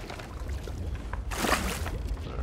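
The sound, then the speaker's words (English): Water bailed out with a bucket pours in a single splashing burst against a low rumbling background, with no voices. “Oh, you took care of, all that in one bucket swoop?”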